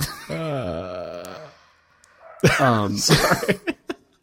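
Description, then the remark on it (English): Dogs upstairs: one lets out a long, wavering howl, then after a short pause breaks into yelping followed by a few quick, sharp barks. “I'm not sure if I'm supposed to go upstairs and get them to stop barking or just keep going.”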